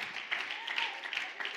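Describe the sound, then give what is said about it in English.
A church audience claps together to give praise to God, a steady, dense patter of many hands blending into a continuous wash of applause at moderate volume, with a faint murmur of voices underneath. “Clap your hands. Come on, let's give God some praise right now.”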